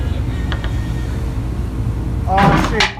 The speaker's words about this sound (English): Dude, this chair, oh, shit. Hey, he said, oh, shit. He said, this chair is sturdy as fuck as it falls apart.